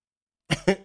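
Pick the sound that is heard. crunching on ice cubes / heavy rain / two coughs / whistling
two coughs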